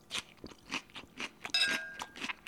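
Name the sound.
crunchy salad being chewed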